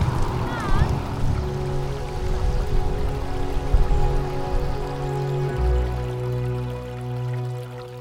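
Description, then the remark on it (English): Water trickles and drips steadily in a shallow stream in a Chinese streamside garden, a continuous babble layered over a low, steady hum, with a brief chirp near the start. “I think the main thing that I really like about this garden is the water.”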